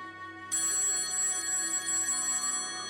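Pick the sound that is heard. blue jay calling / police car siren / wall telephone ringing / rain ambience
wall telephone ringing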